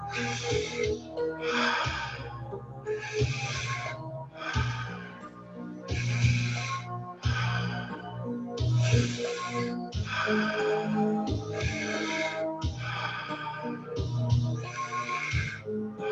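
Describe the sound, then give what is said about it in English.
Rapid, forceful breaths in and out during a guided breathing exercise of 21 breaths, about a dozen strong airy bursts in steady rhythm, over a low sustained humming tone that runs beneath them. No talking. “So 21 times, breathing in.”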